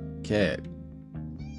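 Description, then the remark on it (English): A cat meows loudly: one strong, drawn-out meow, then after a short pause a second, softer meow. “Excuse me, Cat, I'm trying to do a podcast. Do you mind?”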